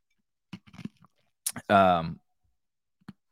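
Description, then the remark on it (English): Ice being chewed: a few short, crisp crunches in quick succession, then a brief voiced sound and one last faint crunch. “Sorry, chewing ice.”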